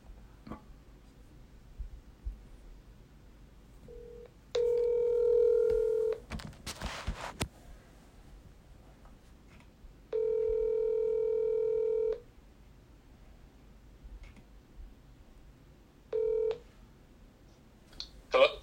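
Telephone tones over a quiet line: three steady electronic beeps, two long and one short, spaced several seconds apart, with a brief burst of noise after the first, like dialing and a dial tone.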